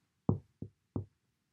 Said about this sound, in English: But just then, all at once, something gave three taps on the window pane.